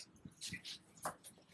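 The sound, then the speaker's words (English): A dog, upset and ready to go out, whimpers in a few short, high-pitched whines, soft, with brief pauses between them and no voices. “Ooh, my dog was, he was mad about it.”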